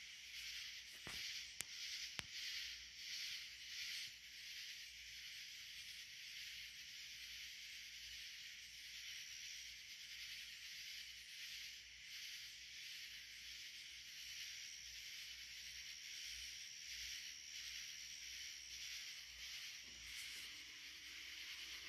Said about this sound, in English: You may want to close your eyes and keep breathing, or just sit there and listen to the tranquil voices of the tree frogs.